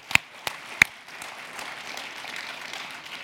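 Three sharp, separate claps ring out, then a youth group joins in with steady applause welcoming first-time guests, a dense, crackling patter of many hands that holds at an even, moderate level to the end.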